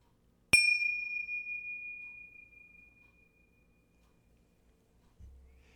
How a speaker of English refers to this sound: I'm going to start our meditation with a single bell, and I'm going to close it with a double bell.